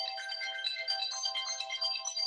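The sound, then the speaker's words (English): A 30-minute timer goes off with a bright electronic ringtone-style alarm that chimes continuously, with steady high-pitched melodic tones and no pauses, fairly loud on its own with no talking. “So that's the timer. That's the 30 minutes.”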